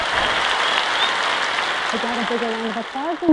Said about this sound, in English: I'm fine, and I was just going to say, where is my fake applause? There is nothing fake about it. There's a crowd.